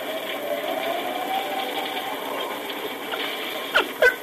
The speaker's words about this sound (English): Quiet him. Quiet, Dan. Quiet. Hush up. Quiet that dog or I'll quiet him for good.